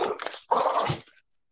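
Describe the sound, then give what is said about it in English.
A dog makes two short bursts of rough, whining noise, a growly whimper followed by a longer snarling grumble, then falls silent. The dog is attacking its owner, trying to pull off his pants. “Sorry, my dog is attacking me right now.”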